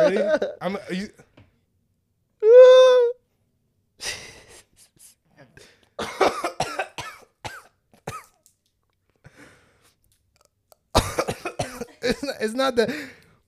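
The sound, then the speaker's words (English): A person coughs harshly in irregular bursts and fits after taking a rip of something inhaled, with throat clearing, gasping breaths, a short strained vocal groan early on, and a final prolonged hacking spell. “We're going to take a rip right before the pod starts.”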